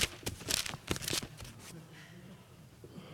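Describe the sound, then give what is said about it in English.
A church audience turning Bible pages to Luke on a Sunday morning: a flurry of crisp, overlapping papery rustles in quick bursts for over a second, then settling into a quiet room hum. “And I say, turn to Luke, and I hear the pages turning. I love that sound.”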